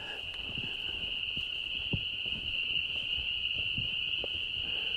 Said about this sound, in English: Can you identify more than one kind of frog here that we're listening to? Because those loud, familiar ones are the peepers. Right. I'm hearing mostly peepers. I was wondering if I might be hearing a different trill, but I can't be sure.